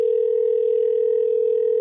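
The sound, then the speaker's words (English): A steady, unbroken telephone dial tone hums at constant loudness for nearly two seconds, clear with no voices present. “My next phone calls to the police, so we'll get to the bottom of this.”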